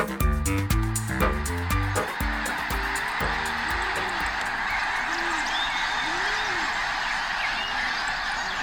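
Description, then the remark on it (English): A flock of migrating birds calls out in loud, overlapping honks at first, then thins to scattered, drawn-out honks over a steady rushing background noise, with no voices. “The sound of winged dinosaurs during migration.”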